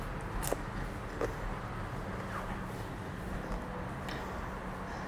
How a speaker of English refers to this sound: I'm chewing and eating bacon, y'all.